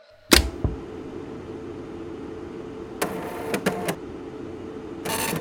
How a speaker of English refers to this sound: On the 21st of August, 1981, Australian physician Julie Cliff received the following message on her telex, a print-on-paper precursor to modern text messaging.